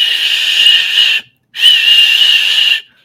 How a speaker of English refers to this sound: Did you have your wireless whistle, Steve? Your digital whistle for game here.